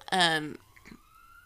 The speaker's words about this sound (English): Again, with the sirens.